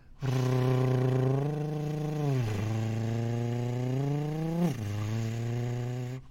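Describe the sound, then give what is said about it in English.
A sustained voiced buzzing trill, a rolled R made while saying a V (a voiced alveolar trill with labiodental co-articulation), held for about six seconds with wavering pitch that dips twice, sounding like an old car engine idling and revving. “Roll an R while saying a V. Voiced alveolar trill with labiodental co-articulation. Sounds like an old car.”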